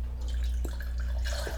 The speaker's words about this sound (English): Well, since you're pouring yourself a beer, my second question was actually, what is your favorite beer?